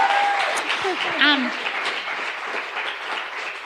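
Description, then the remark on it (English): An audience applauds steadily for several seconds, a dense wash of clapping that stays fairly loud throughout, with a brief whoop and scattered voices rising above it near the start. “Okay, one more round of applause.”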